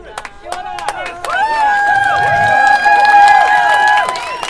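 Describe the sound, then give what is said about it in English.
A man heckling from the audience yells loudly from within the crowd, his voice rising into a long, sustained scream over a couple of seconds, with clapping and general crowd noise around him. “they are screaming, erase their names, much like this man is screaming right now.”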